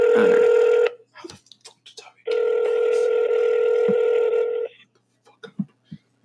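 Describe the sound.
A steady electronic phone ringback tone sounds twice, a short burst and then a longer one of about two seconds, with quiet voices murmuring in the pauses between them.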